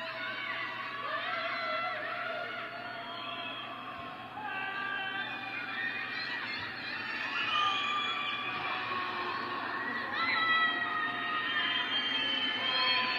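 Many voices scream and wail from apartment windows in Shanghai, China, after a week of total lockdown, a dense, continuous chorus of high, wavering cries that overlap and swell, growing slightly louder toward the end.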